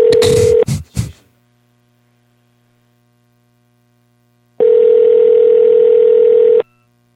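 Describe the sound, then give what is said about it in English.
A phone line rings on an outgoing call to a brother-in-law: two steady, loud ringback tones, the first clipped short, separated by about four seconds of silence, with brief rustling after the first ring. “Let's see if Tim answered the phone, man, and then we'll be pretty close to wrapping up.”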